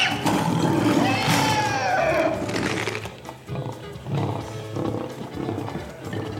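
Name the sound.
lion roaring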